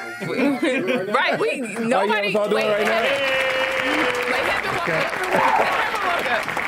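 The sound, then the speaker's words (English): A studio round of applause clapped by hand: after a few seconds of laughing voices, steady dense clapping rises and carries on to the end, with a held vocal tone and chatter over it. “so can we get a round of applause sound in there?”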